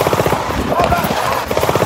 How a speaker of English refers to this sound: Now, listen again. Some of the gunfire sounds like it's coming from a machine gun.